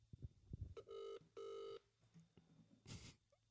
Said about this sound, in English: All right, here we go. It's ringing. It's ringing, guys. It's ringing.